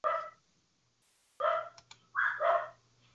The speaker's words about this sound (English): Uh-oh. Well, they say the show never ends till the fat lady sings. I think on Cultdom, the show ends when the dogs start barking, doesn't it?